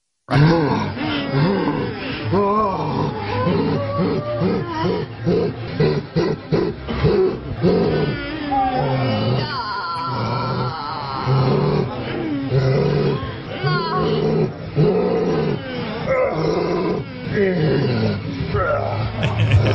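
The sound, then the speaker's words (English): A man's voice growls and roars like a bear while climaxing, deep and rasping, in a loud, nearly continuous run of rising and falling snarls and grunts lasting about twenty seconds. “A guy sounding like a growling bear while he was coming.”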